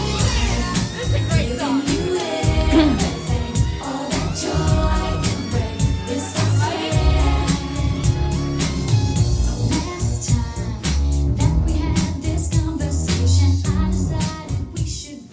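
A 1990s pop song plays loudly and steadily, with a punchy regular beat, deep bass and layered melodic parts running throughout, and no talking over it.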